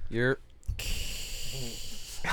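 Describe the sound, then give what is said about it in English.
A person makes a long, drawn-out hissing sound imitating a snake, steady for over a second, after a brief burst of voice, with another short voice murmuring underneath. “You're sound like a snake hissing.”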